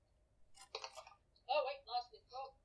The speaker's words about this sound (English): Oh, wait, lost it. Oh, right. Obviously, if the dice has ran away, it's going to be a good roll. I got a 17.